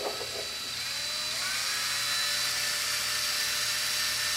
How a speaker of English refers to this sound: I'm holding this drill. We have not played with this toy on anybody. This is the first time.